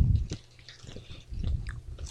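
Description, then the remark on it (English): Chewing of crunchy corn-flavored Pretz pretzel sticks, with repeated crisp bites and crunches in an irregular rhythm, fairly loud, with no talking. “They're not real good when you chew them.”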